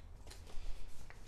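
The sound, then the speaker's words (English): Soft rustling and crinkling of a sheet of paper that is starting to fall apart being handled, with a few brief papery scrapes and flicks over about a second, fairly quiet and with no voices. “I think I need to do something special with the paper because the paper is starting to fall apart.”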